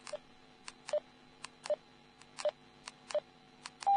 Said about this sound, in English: First, the beep system. If I change channels, then each time I change channel, there is a beep. But when I reach the first channel in the list, it gives a high beep.